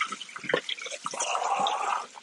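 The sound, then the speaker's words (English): Running tap water splashes and gurgles inside empty metal cans of Rotel and tomatoes while cooking, a continuous hissy rush with sloshing bursts and a few hollow knocks, steady at moderate loudness with no talking. “Just rinsing these cans out.”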